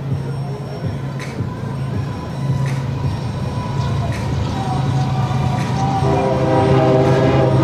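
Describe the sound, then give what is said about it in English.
A train rumbles past on tracks behind the right field wall of a baseball stadium with a steady, loud, low drone, and its horn blares in a sustained tone over the rumble toward the end. “There goes the third train of the day.”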